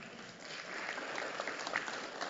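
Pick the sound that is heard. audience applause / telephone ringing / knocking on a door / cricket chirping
audience applause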